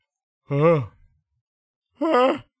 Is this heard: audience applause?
no